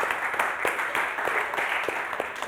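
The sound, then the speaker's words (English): An audience applauds Converge and the Greater New Orleans Funders Network, with many hands clapping in a dense, continuous wash of sound and a few sharper individual claps standing out. No one speaks over it. “And so if we can give Converge a round of applause, and also the Greater New Orleans Funders Network.”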